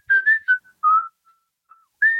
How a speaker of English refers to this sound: with silhouettes, and someone is like whistling, you know.